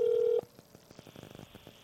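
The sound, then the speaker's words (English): A phone places a call: a loud, steady dial tone sounds briefly, then cuts off into a faint, rapid pulsing buzz of interference. No one speaks. “I can hear it more pronounced now that he's calling somebody.”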